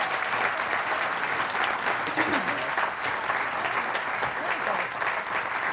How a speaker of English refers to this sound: Please give our panelists a big round of applause.